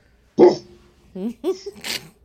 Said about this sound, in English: That was my real dog.